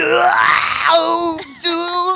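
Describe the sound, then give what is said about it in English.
A man's voice lets out a loud, strained anime-style yell, rising in pitch, then breaks briefly and resumes with a second sustained, intense shout. “give us your best anime yell.”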